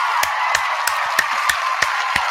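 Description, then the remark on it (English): Applause for the sponsor Premier Cocktails, with a dense, steady wash of clapping, punctuated by sharper, evenly spaced claps roughly three times a second. No one speaks. “Let's go ahead and give a warm round of applause to Premier Cocktails.”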